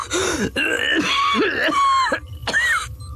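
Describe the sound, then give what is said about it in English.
A man coughs hard in a rapid fit, five or six harsh, rasping bursts in quick succession, loud, with a brief gasp-like pause before the last cough. “He broke off into another coughing fit.”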